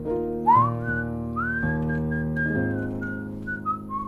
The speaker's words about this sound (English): And Whether I am or not, I'll often just sort of walk around whistling a bit, you know.